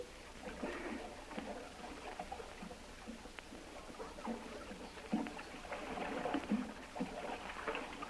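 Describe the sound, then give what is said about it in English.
A person swims through water from beside a canoe toward a large boat covered over with a camouflage net: steady splashing and sloshing with irregular strokes, continuous for several seconds at moderate loudness, with no voices. “Hold the canoe on this side here, and I'll swim up there.”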